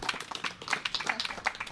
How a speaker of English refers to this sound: That's what a child would do too, clap for themselves. Mm-hmm. I just realized I did that.